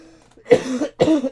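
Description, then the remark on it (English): Two harsh coughs in quick succession, each a loud raspy burst with a short rough tail, separated by a brief pause, with no talking. “Yeah, of course, right near the end, I'll cough half my lung out.”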